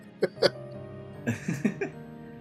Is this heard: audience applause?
no